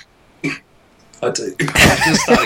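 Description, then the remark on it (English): A fit of coughing: one short cough, a pause, then a run of harsher, louder coughs and throat-clearing sounds crowding together near the end. “I might jump in while … just has a little coughing fit there.”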